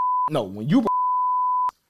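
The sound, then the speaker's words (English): A steady, high-pitched electronic censor bleep runs over a spoken word, with a brief burst of voice breaking through in the middle before the tone resumes and cuts off. “Like, bleep this name.”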